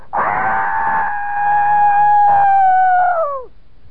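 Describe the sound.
A long, loud, sustained scream holds a steady high pitch for over three seconds, then drops off sharply at the end. It is a single unbroken cry with no talking.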